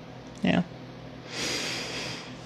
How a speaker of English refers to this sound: There's the yawn.